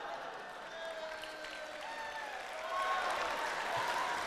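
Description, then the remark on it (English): An audience claps in a steady wash of applause after a reading of the David and Goliath story, swelling louder about halfway through, with faint voices murmuring underneath. “Why are you clapping?”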